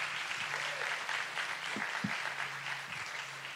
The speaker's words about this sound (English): And give it applause for this guy.